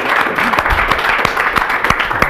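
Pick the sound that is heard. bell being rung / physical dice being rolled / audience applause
audience applause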